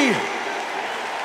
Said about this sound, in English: Clap your hands again with all your might. With all your might.